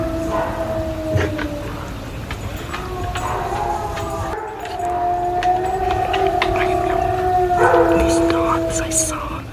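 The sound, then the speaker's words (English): A soft, far-off howl recorded on a phone, recurring about every 10 seconds, drawn out in long, wavering tones that rise and hold through the whole stretch, faint against a steady background hiss. “Every 10 seconds or so, you hear this howl.”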